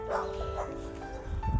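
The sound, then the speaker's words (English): Dogs bark in a short, uneven burst, a couple of sharp woofs followed by a later one, at moderate loudness over a steady background hum. “Zeus podcast is brought to you by puppies, moons, cold breeze, chairs, oh, Twilight Bark.”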